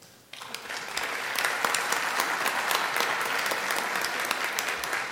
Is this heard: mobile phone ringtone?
no